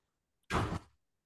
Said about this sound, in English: I heard something. Okay. No, my son just ran to the bathroom and he slammed the door.